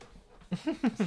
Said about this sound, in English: Why are you panting so hard